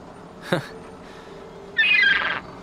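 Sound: seagull squawking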